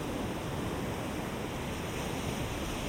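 A steady, continuous wash of ocean waves breaking on shore, a dense hiss and rumble with no distinct individual wave crashes, holding an even level throughout with no voices.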